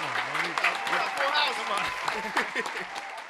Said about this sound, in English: Can we get a round of applause? Come on up. Come on, y'all. Keep the applause going, man.